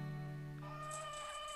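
Chickens on a chicken farm way down south in the United States call out in one drawn-out, nasal vocal sound that rises in pitch halfway through, heard alone and fairly faint, with no one talking.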